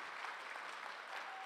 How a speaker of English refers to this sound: Let's give these guys a hand clap appreciation.